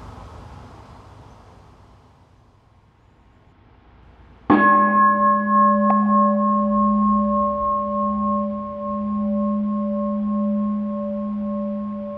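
A meditation bell is struck once to begin a meditation, after a few seconds of near-silence. Its deep, warm tone rings out clearly and sustains with a slow, shimmering decay to the end.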